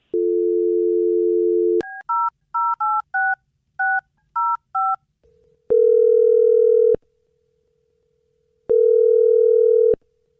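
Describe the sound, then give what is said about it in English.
A phone call being placed to a woman: a steady dial tone, a quick run of keypad beeps, then two long ringback tones with a pause between them, clear, with no one talking. “And so we're about to call her and see what happened.”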